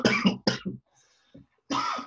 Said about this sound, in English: Yeah, so I just had a bit of fucking corona cough, didn't I?